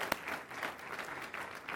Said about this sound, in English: Yeah, you can clap.